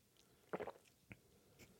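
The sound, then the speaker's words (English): A wet gulp of someone swallowing a drink: one short throaty burst followed by a couple of fainter mouth clicks, with no talking around it. “For that big old gulp.”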